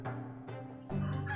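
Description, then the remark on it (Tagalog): A chicken clucks and crows in three drawn-out, nasal calls, one after another, loud, with no talking over them. “Asa man ang usa ka manok din eh?”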